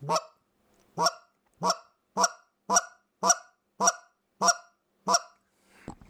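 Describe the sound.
A goose call blown in a steady series of about nine sharp, loud clucks, evenly spaced, imitating a goose, followed by a softer, breathy note at the end.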